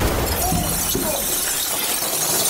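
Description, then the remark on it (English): A loud, harsh burst of breaking glass as a glass piggy bank is smashed with a hammer, a dense crunching and tinkling that carries on for a couple of seconds as shards scatter and settle. “The glass piggy bank is stronger than we thought,”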